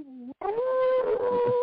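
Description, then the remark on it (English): A person imitates a wolf howl with a short rising note, a brief break, then a long sustained wavering howl held loud, with faint background chatter underneath. “Do the wolf, bro.”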